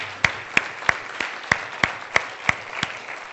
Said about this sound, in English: Can you give the Lord a hand clap this morning because he's good?